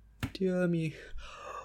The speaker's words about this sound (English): yawning.